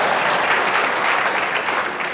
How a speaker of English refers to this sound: Round of applause for Bank of America for allowing me to overdraft.